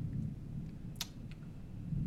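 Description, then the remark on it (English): A low, steady rumble of thunder rolls through the whole moment, with a faint sharp crackle near the middle. No one speaks. “And the thunder and the lightning do not agree with me.”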